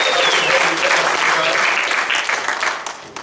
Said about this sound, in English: And I'd like to give a big shout out to our online audience. Can we give them a big cheer so that they can watch us?